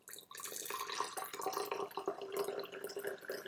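A steady stream of water pours over already opened-up tea leaves for a 20-second second steeping, a continuous bright splashing and trickling that holds an even level for several seconds, with no talking.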